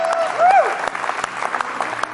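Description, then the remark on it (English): An audience breaks into steady applause, dense clapping that holds for a couple of seconds, with a brief rising whoop near the start. “Give him a round of applause tonight.”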